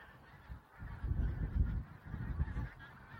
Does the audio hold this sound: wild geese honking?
yes